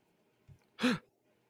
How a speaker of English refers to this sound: I love gasping.